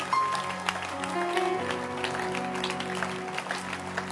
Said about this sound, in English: But clap your hands for Bishop.